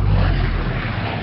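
A small electric RC model airplane drones steadily overhead during a flying display, a continuous loud buzzing hum with a heavy low rumble that holds without a break for the whole short stretch, with no voices.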